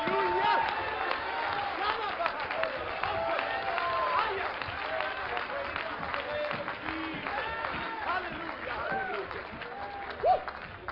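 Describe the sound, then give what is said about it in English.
A church audience claps their hands to the Lord and cheers steadily for about eleven seconds, a dense, sustained wash of applause with scattered shouts and voices mixed in, fairly loud and continuous throughout. “Would you clap your hands to the Lord and let's thank him for what he's about to do.”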